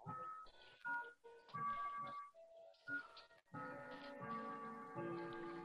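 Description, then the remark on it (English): A clock goes off with a bright, melodic chime, its ringing notes arriving in short bursts before swelling into a fuller, sustained run of tones, fairly loud with no talking. “There's the clock going off.”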